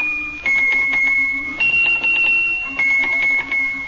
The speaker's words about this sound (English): Swiss bells for us today. They're little teeny bells, and when he picks one of them up and shakes it, it makes a note. They make different notes.